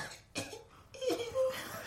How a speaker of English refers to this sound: Oh, yeah. Smoke. You billow, smoke billows around you, and you cough, wiping away tears.